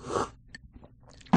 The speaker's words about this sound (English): So this is how I'm gonna eat a pickle on mic now. I'm gonna leave it in too. Yeah. This is how get that crunch.